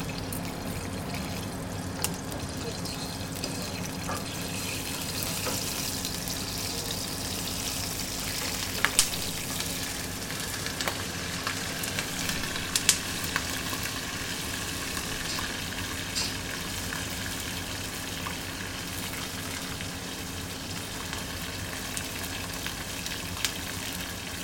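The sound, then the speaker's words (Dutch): Steady sizzling of food frying in a pan, a dense crackling hiss with occasional sharper pops, continuing without any voices for the whole stretch. “Wat gebeurt er in de pan? Het gaat knallen.”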